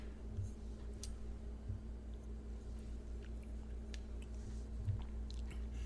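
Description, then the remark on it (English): Quiet sipping of bourbon whiskey, with a few soft wet mouth sounds and small swallows spread over a low steady background hum, no talking. “Do you want to try a sip here?”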